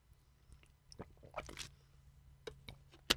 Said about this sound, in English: Excuse me. I got a bug in my throat or something here. Let me take another drink of water.